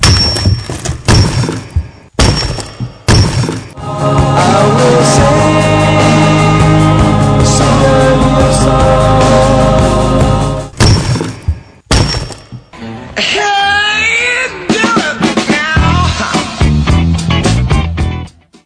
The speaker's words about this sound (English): And once again, that's the sound of rock cracking.